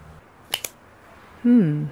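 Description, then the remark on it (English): A deck of cards is cut and handed back after shuffling: two quick, crisp papery snaps close together, followed by a person starting to speak. “All right, that's enough shuffling. Cut it. Hand it back.”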